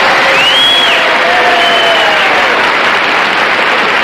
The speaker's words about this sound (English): They really did love him. Oh, yeah. They loved him. Yeah. That applause when he comes in is amazing.